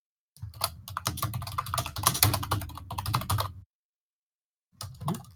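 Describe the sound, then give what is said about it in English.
Rapid typing on a computer keyboard, a dense clatter of keystrokes for about three seconds, then a short pause before a brief final burst of keys. “Bang them fucking keys, son.”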